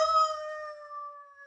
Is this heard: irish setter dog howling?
yes